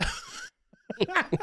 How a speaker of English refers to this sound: Everyone's got a dry cough. We're in the Pacific, like the tri-state area, the Northeast, and it's really dry. It's a little cold.